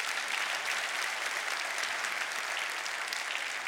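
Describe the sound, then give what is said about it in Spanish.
An audience claps together for the Lord in steady, sustained applause, a dense wash of many hands at an even level throughout, with no voices standing out. “Dale un aplauso al Señor, gloria a Dios.”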